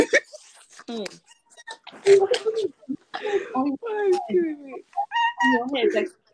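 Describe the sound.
A person imitates a chicken, making a run of loud clucking and squawking noises with bright, bird-like pitch swoops over about six seconds.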